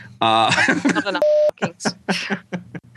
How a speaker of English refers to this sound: Then not too much of that, folks. I hate putting all those beeps in. So you love it. At least I got a beep this time.